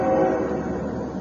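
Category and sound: vehicle, train passing outside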